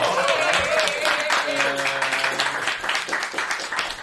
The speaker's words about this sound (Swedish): Välkommen upp på scen. Ge dig en liten applåd.